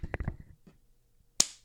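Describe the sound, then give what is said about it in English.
A single sharp hand clap rings out loudly after a stretch of soft, scattered tapping and shuffling noises, its crisp snap trailing off quickly. “You made a clap?”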